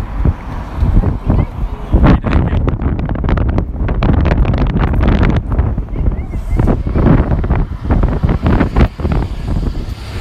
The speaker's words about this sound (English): Oh, it's windy too. It's so windy.